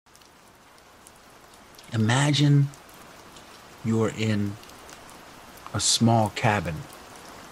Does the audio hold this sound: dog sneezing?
no